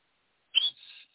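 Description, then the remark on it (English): A single short, high-pitched whistle blown with the mouth, starting sharply and then thinning into a fainter, wavering tail before cutting off. No one talks over it. “That was my mouth whistle.”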